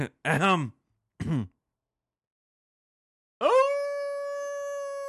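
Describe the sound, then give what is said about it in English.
A voice imitates a werewolf howl in two short, wavering, loud bursts, then falls silent before a long, steady tone rings out and slowly fades. “Oh, sounds like a coyote.”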